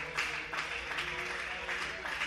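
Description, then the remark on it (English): A crowd claps hands to magnify God, in a dense, steady wash of overlapping claps, with murmuring voices mixed in underneath. “So would you clap your hands and would you magnify God here today?”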